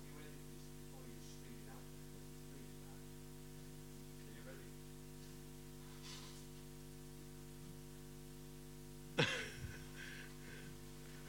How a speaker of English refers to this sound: Let me blow my nose. Is that okay?